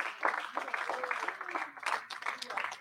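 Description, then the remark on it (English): A church audience claps hands in praise of God at the end of a prayer, a dense, continuous patter for a few seconds, steady and fairly loud, with a few voices calling out over the applause. “And if you love him, can you give him a hand clap in this place?”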